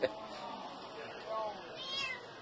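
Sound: cat meowing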